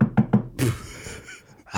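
knocking on a door

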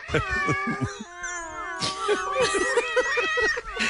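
cat meowing

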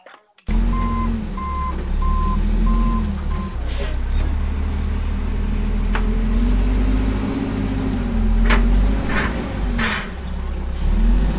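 truck reversing beeps

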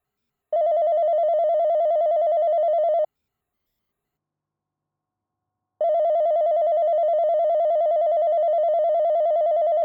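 wall telephone ringing

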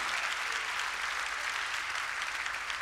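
audience clapping hands

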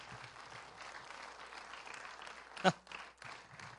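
church audience clapping hands

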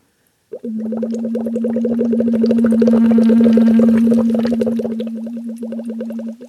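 humming

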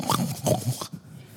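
pig oinking

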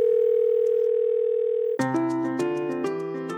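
telephone line tone

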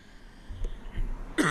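coughing

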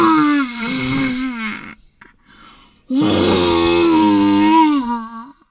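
loud creature roar

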